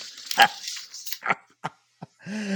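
A male dog lets out a few short, sharp barks spaced irregularly, then a sustained higher whine at the end, moderately loud with no one talking.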